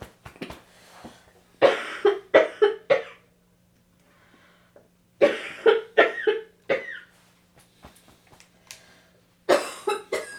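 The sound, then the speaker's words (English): Harsh choking coughs after swallowing something, in three loud clusters of rapid bursts with short pauses between, sounding strained and raspy, with faint breathy sounds in the gaps and no talking. “You need Heimlich or anything?”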